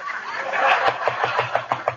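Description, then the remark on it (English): McGee knocks on a door in the morning in a quick, steady series of about seven raps, each sharp and fairly loud, following a brief muffled vocal sound at the start. “Answer the door, dearie.”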